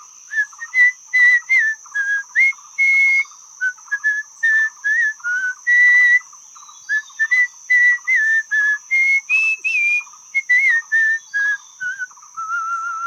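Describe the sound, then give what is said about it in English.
A boy whistles a lively tune alone as he walks along with a fishing rod, a steady run of clear, pitched notes that slide and bounce up and down in quick phrases, fairly loud. “And as he walked along, he whistled a tune.”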